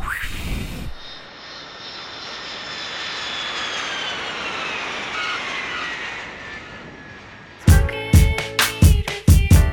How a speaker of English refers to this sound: But the instrumental is so damn strong that I have both versions, and I play them so often, it begins with a nice little airplane.